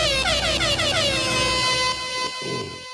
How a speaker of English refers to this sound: Let's run through them, baby. My drum roll, air horns.